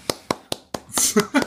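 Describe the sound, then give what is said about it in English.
Four slow, evenly spaced, crisp hand claps ring out as a round of applause, like a single person applauding, followed by a burst of voices talking over the end. “Round of applause, everybody.”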